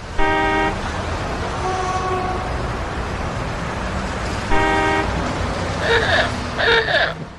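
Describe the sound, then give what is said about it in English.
A car horn honks in long steady blasts, one at the start and another midway, over a constant rumble of street traffic, followed by a few shorter higher-pitched beeps near the end. “No, that's actually car noises.”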